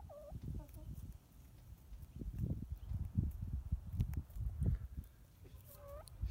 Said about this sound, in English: Shunned. These other larger, stronger chickens don't like her as much.